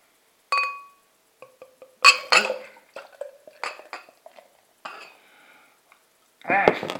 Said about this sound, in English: Right, let's decant this into my Wirral Beer Festival glass and see what I think. Opens with a good, as you heard.